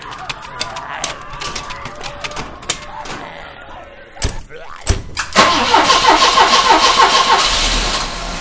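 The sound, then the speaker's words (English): Clunks and rattles give way to a vehicle engine cranking and catching, then revving loudly into a steady, throaty roar as the ambulance pulls away. “Get in the ambulance.”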